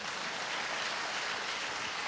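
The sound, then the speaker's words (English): A crowd claps their hands together in a dense, steady burst of applause, a continuous crackling wash at an even level throughout, with no voices heard. “You go, come on, somebody clap your hands for that.”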